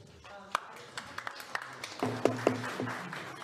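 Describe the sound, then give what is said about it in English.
A few scattered, irregular claps from the audience at a public meeting after a speaker's public comment, fairly faint and sparse rather than a full ovation, with murmuring voices rising underneath partway through. “So let's not applaud after every person who speaks.”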